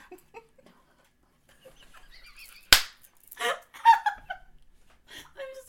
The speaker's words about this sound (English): Loud clap in everyone's ears.